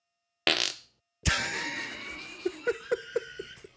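A short breathy blast, a brief pause, then a long raspy fart that trails off into a rhythmic run of five or six quick sputtering pops.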